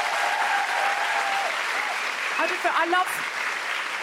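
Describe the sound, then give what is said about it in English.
A large audience at the Sydney Opera House applauds steadily for several seconds, a dense, even roar of many hands clapping, with a few faint voices and whoops rising briefly through it. “A big round of applause for everyone at the Sydney Opera House.”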